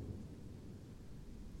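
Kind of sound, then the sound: nature, rain storm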